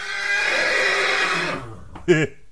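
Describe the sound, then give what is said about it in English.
A horse neighing sound effect: a loud, clear, long quavering whinny that trails off, followed by a brief sharp snort-like burst. No one talks over it. “That was a horse.”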